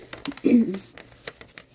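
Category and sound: household object, paper rustling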